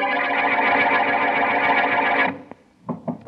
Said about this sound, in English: Oh, that door.